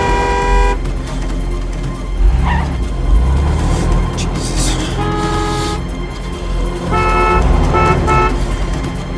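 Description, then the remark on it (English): Busy road traffic rumbles steadily while car horns blare in several long toots near the start and end, with a brief high squeal of tyres rising in the middle. “at Ann Archer's car before it skids into the central reservation, and a number of cars go with it.”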